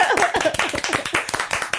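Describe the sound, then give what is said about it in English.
A couple of hosts clap their hands in quick, uneven bursts of sharp claps lasting under two seconds, with brief voiced exclamations mixed in near the start. “Should we clap?”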